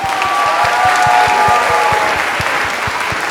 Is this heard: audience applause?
yes